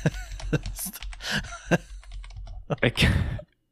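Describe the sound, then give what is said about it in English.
Rapid clacking of keys on a computer keyboard as someone types to look things up on Google, a quick irregular burst of strokes lasting a few seconds before stopping abruptly, with a voice murmuring faintly underneath. “I can hear those little fingers of you just going to town on that keyboard.”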